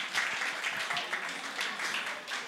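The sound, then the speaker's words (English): An audience breaks into steady applause for the fathers who change diapers, a dense wash of many hands clapping at once, fairly loud and sustained without letup, with a faint murmur of voices beneath it. “Clap for the fathers.”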